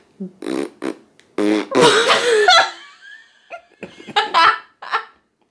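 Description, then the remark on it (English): Several wet, sputtering, loud raspberry noises blown with the lips come in short bursts with one longer buzzing blast, broken up by bits of laughter. “I hate fart mouth.”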